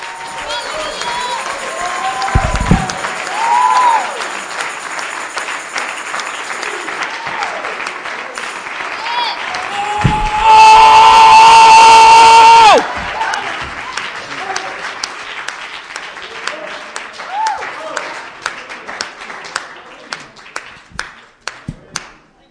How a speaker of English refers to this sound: Give the Lord a great big clap offering right now.